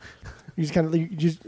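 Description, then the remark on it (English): A person imitates a dog begging for a treat with its front paws up: a short burst of voiced, panting, whimpering sounds in two quick pulses, fairly loud, lasting about a second. “Like the dog, I'm doing the hand motions, the dog begging for a treat with my front paws up.”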